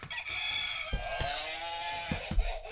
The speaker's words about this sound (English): Is that annoying? No more fake buzzing. Now we actually have official answer buzzers.